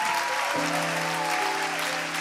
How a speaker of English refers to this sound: Why don't we give them all just a good round of applause?